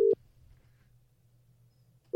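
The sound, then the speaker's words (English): A telephone ringback tone heard down the line: a steady low electronic burst, a long pause of about two seconds, then the tone starting again, clear and moderately loud with no voices. “It's ringing.”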